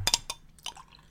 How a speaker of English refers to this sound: Let me pour Ed Ray this last bit.